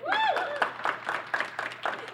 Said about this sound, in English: The Beto sex tweet should go in the history internet books, please clap. You all look very uncomfortable clapping for this, and I understand why.